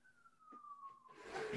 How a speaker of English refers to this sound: Hold on. Let's hold that thought. I actually just realized my window's open. Hold on. I'm going to close this. I like hear too many sirens. I'm distracted.